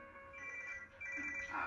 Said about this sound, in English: Ah, fuck with the fucking phone! Stop it! Forget the phone. Get it. Answer it.